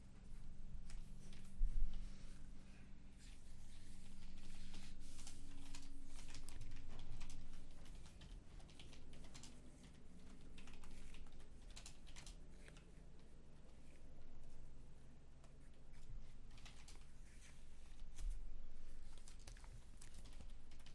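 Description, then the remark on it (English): Keyboard typing clatters steadily for about twenty seconds, a quick irregular stream of soft key clicks with brief pauses, over a low background hum and no talking. “I have an idea, but I'm waiting for you to stop typing.”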